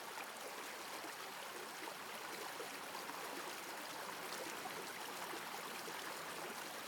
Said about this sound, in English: When you open your mind's eye, you'll be at the edge of a beautiful stream.